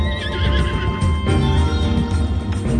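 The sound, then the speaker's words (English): A horse neighs loudly in a drawn-out whinny, prominent over a steady bed of game music with hints of hooves clip-clopping beneath, in gameplay of the Zelda DLC Pack 2, The Champion's Ballad. “New horses, new dungeons.”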